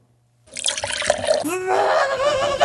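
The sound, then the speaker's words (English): After a brief silence, water suddenly pours and splashes in a steady, noisy gush, while a voice cries out over it partway through. “you need to be careful with your water because there are way too many plugs in this outlet as it is, and I'm already risking electrocution.”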